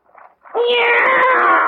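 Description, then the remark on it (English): A male cat, just taken out of a big box, meows: a brief soft murmur, then one long, loud, drawn-out wailing meow with a steady, slightly quavering tone that holds to the end. “It's a cat,”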